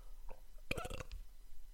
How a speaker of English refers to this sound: They can edit that in more. We need more burps. Burps. The burping hour.